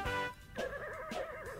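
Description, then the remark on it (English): A horse whinnies loudly with a wavering, quavering call, set within a song that has a sustained synthesizer-like tone beneath it. “The horse is killing me.”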